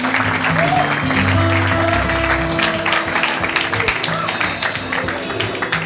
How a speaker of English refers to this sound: Big round of applause.